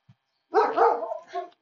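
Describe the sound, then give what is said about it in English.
A dog barks, a loud burst of a few rough, run-together barks lasting about a second, followed by a softer trailing yap, with no one talking. “Giving room to the dog.”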